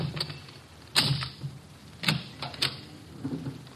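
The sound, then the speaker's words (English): A skeleton key unlocks a locked door: a few sharp metallic clicks and clunks at uneven intervals, moderately loud, with faint rattling between them and no voices. “He's reformed, so he gave me all his skeleton keys.”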